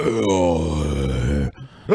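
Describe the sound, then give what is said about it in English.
An inverted burp: a long, low, croaking sound drawn inward through the throat, steady and raspy for about a second and a half, then a brief rising vocal noise. “It was an inverted That burp.”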